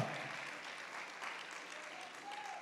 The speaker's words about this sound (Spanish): Denle un fuerte aplauso al Señor con todo el corazón.